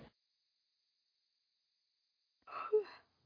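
A person yawns once, a short breathy exhale with a falling vocal tone near the end, fairly clear after a long stretch of near silence.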